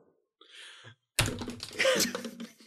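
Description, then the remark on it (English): A single sharp knock of a pen slammed onto a desk lands abruptly after a soft breathy rustle, followed by a busy clatter of lively noise and voice. “I slammed a pen on the desk.”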